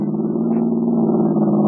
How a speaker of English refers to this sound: Honk the horn. I'll swing over and get as close to him as I can.